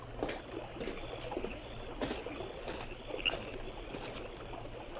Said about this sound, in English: You hear that? A splash. That's right. Something fell into the river.